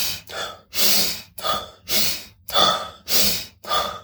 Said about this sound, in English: So this one or two or three cycles of this breathing, again, so 25 to 30 really fast breathe-ins.